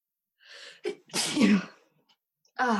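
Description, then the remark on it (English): A single loud sneeze: a quick sharp intake of breath followed by an explosive burst, then a brief pause before a short vocal sound at the end. “I'm gonna sneeze.”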